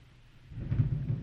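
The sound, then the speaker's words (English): A low, deep rumble of thunder swells in after a quiet moment and rolls on steadily, heavy in the bass. “Oh, dark and stormy night, guys.”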